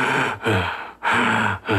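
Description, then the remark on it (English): A voice imitates a child gasping for air after being set on a bathroom counter: three or four strained, raspy inhalations in quick succession, fairly loud, with brief breaks between each breath. “When I set him on the counter, he was gasping for air. It was like a...”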